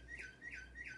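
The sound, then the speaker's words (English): A bird-song wall clock chimes at 9 a.m., playing three quick, evenly spaced recorded chirping calls, bright, with no voices over it. “There goes the clock. Why does it always go off?”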